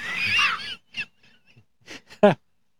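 Several harsh crow caws ring out, starting with a long raucous squawk and followed by a few shorter, scattered calls, the last one loud. No one speaks.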